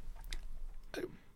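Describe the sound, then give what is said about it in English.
A short, muffled sneeze in a recording studio bursts out near the end, preceded by a couple of faint breathy clicks, with no talking around it. “I have no idea where to go, and I have to sneeze.”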